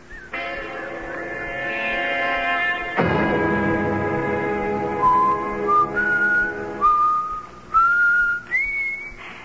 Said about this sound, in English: To whistle like that all the time?